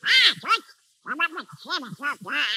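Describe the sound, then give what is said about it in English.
The cartoon duck voice of Donald Duck squawks out a quick run of raspy, nasal quacks, about six loud bursts in two clusters with a brief pause between, on its own. “What's that noise, Mickey? Oh, that's Donald Duck.”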